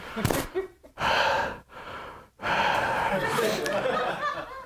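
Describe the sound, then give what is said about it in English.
A voice imitates the heavy, exaggerated breathing of a yogi answering the phone: a sharp gasp, then a few long, loud, airy inhales and exhales in close succession. “Your breathing is like, no.”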